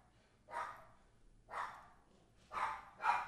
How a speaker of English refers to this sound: And there goes the dogs again.